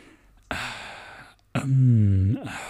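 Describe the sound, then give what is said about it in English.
A voice imitates the heavy breathing and mouth noises of people waiting in a meeting in a film's quiet opening scene: a long breathy exhale, then a loud voiced, groaning breath, and another airy breath trailing off. No words are spoken. “It's just people breathing and making mouth noises, and they're like waiting for this guy to make an approval on whatever the advertising thing that they're.”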